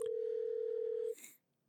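A phone line's ringback tone sounds once as an outgoing call rings, a steady, fairly loud electronic hum lasting about a second before cutting off into near silence.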